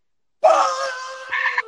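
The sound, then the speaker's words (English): A voice imitates a boy's loud, pained yell after he was smacked in the head by his father: one sustained, strained cry starting abruptly and holding for over a second, rising slightly in pitch near the end before cutting off. “Like, normally he just kind of like cries, but this time he proper yelled.”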